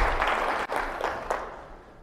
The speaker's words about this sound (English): All right, I didn't clap first. You clapped, okay?